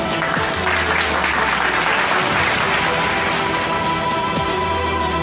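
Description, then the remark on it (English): Steady, dense applause from a crowd applauding Donald Trump, a loud continuous wash of clapping that holds at the same level for about five seconds, with no one speaking over it. “You got to give that man his applause.”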